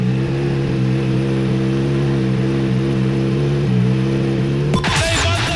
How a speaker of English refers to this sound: Now that, dear listener, is the sound of the 2003 Le Mans winner and the V8 engine firing up outside the new premises of Bentley Motorsport.